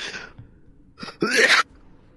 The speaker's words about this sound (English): Excuse me. Sorry. Almost coughed up a lung there.